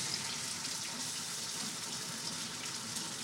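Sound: pasta sizzling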